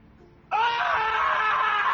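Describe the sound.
A voice imitates an anguished scream: a loud, sustained, strained cry that bursts out abruptly after a quiet moment and holds steady, raw, for over a second.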